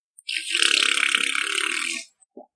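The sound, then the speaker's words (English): A single raspy, buzzing fart noise blown with the mouth, lasting nearly two seconds, loud, followed by a faint short click; no talking. “I'll just make fart noises with my mouth.”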